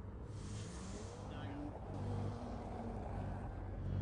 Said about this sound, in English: Man, that E36. Look, he's so sideways.